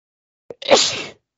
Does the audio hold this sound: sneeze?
yes